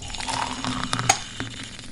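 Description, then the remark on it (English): A bright ceramic teacup clink rings out once over a soft, steady rush of tea being poured, with a few fainter taps around it. No one speaks. “Why don't you put up your feet and pour yourself a nice cuppa?”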